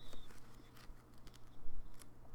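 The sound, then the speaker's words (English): Soft rustling of the pages of a poetry book being turned, a few brief crisp papery flutters over a faint steady hum, with no voices. “You hear those pages turning?”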